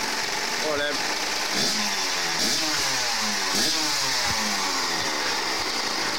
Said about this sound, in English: When he's not encouraging his mates to rev up a Kawasaki motorbike in his backyard.